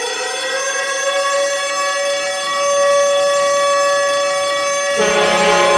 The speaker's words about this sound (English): But if you're not afraid of spoilers, or have seen the show and want to hear our thoughts on the nitty-gritty details, go ahead now, because I'm about to set off the Super Spoiler Alarm!